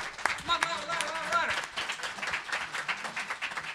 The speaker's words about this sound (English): You know, these guys don't get a lot of applause. You know what I mean? Like, they're editors.